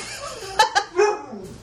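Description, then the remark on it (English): Pet dogs barking, with two quick sharp barks followed by a longer, more drawn-out one, all within a second or so. “Guys, my dogs are driving me nuts.”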